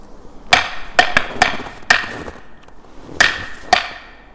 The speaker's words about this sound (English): Knock over here. You heard it?